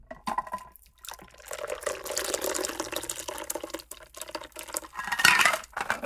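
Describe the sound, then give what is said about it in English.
A Last Word cocktail of Luxardo and fresh lime juice, just shaken, is strained into a chilled martini glass: liquid pours in a steady trickle, with light clinks of glass and metal and a brief bright splash near the end. No one speaks. “Strain it into a chilled martini glass.”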